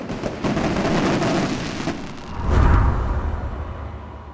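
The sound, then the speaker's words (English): Fireworks go off in a loud, crackling barrage of sharp bursts, building to a deep rumbling boom midway that slowly fades into a lingering roar. “Shining on the father's smile, shining on the quiet tears coming down the best friend's cheeks, shining on the perhaps boyfriend's longing stare, shining on the daughter as she looked into the portal the fireworks opened right before her eyes.”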